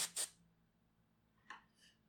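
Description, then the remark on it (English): A can of compressed air for the computer sprays in short, bright hissing bursts to shoo a cat away: two strong blasts right away, then after a pause a softer puff followed by a fainter one. No one speaks. “It's compressed air for the computer.”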